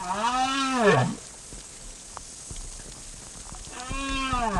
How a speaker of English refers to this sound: For over two decades, Professor Clark has been studying the acoustics of the ocean, including the songs of large whales, like these southern right whales he recorded off the coast of Argentina.